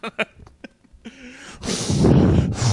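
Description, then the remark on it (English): A few soft mouth clicks and short puffs, then loud, rough breathing rushes straight into a microphone for over a second, with a brief dip before another heavy breath. “Who is mouth breathing into the microphone?”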